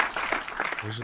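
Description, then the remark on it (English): A brief patter of light clapping from a small group, scattered and soft, mixed with a voice that comes in toward the end. “Based on our give a clap, little clap action.”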